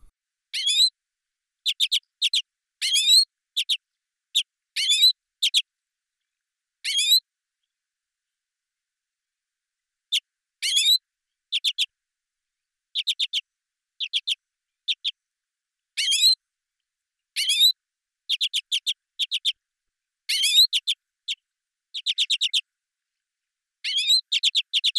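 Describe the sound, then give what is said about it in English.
Bursts of harsh, metallic, staccato calls of an Arctic redpoll, short chirring notes repeated in irregular clusters with brief silences between, fairly clear with no other sounds. “The commonest call is a harsh, metallic, staccato chirr, given in flight or while perching.”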